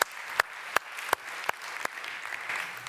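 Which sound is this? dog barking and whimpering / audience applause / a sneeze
audience applause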